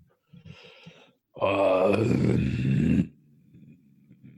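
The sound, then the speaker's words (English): A voice imitates a deep, rumbling chest growl: one loud, sustained, harsh growl about a second and a half long, preceded and followed by softer low murmuring sounds. “this huge growl starts coming up out of his chest.”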